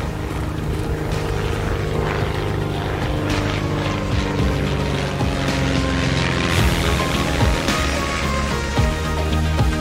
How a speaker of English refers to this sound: This morning, I was worried about a math test, and now I'm on a private jet headed to Malibu.